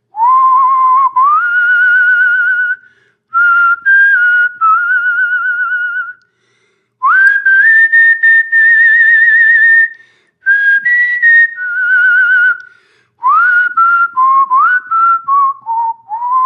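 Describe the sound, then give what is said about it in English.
A man whistles a slow, sustained song melody, phrases separated by short pauses, with pitch gliding smoothly between held notes and no talking. “he is a beautiful whistler.”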